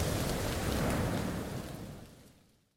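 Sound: rain storm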